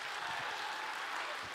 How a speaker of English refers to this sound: Come on, do I get an amen? Come on, if you believe it, give God a clap of praise right now.